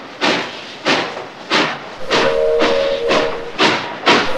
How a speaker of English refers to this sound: Sir, please, sir. Is this train stopping at one of the Rolling Thunder towns? Are you blind, kid? This train has blue and gray resources, not gray and white. There's no way this train is stopping at Rolling Thunder.